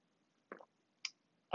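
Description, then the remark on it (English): A quiet sip from a drink: three brief, soft wet sounds, a slurp, then a higher-pitched swallow click and another small gulp, with silence between and no talking. “Taking a sip.”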